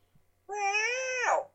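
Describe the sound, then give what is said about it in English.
A single drawn-out meow, about a second long, voiced by a person imitating a cat. It rises, holds steady and drops at the end, loud against a quiet background. “who is currently mewing like a fucking cat.”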